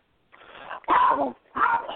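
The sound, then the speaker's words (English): A dog barks a few times in quick succession, fairly loud, with short gaps between the barks and no talking. “My dog is barking and my cat is having a wheezing attack”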